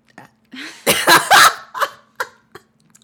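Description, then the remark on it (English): A loud burp rumbles for about a second, followed by a few short, sharp gulping sounds spaced out in the quiet. No one speaks. “I thought you were, like, looking out into the distance, like, about to say something really profound, and then you just burped.”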